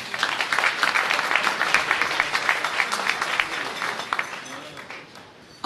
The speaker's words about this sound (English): It's the occasion of the official launch, The South African Police Choir is there, dignitaries from near and far, and MC Derek Watts is in full swing. Please let's give Chief Michael Williams a huge round of applause.